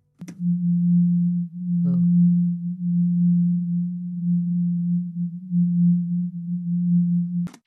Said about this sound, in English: the hum feels like a pulse